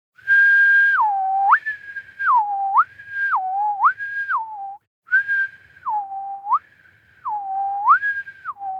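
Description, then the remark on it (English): A person whistles alone, a clear tune that steps back and forth between a higher and a lower note in a steady, repeating pattern, with a brief pause midway. “I'll whistle the tone while we wait.”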